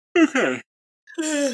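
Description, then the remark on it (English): A drawn-out, voiced yawn, rising and sliding in pitch, followed after a brief pause by a second groaning, breathy exhale. “I thought you were mocking me because I yawn.”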